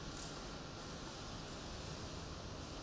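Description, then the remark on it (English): A steady, dense hiss of heavy rain pours without pause, broad and even from low rumble to high sizzle, fairly loud with no voices over it. “Listen to that rain.”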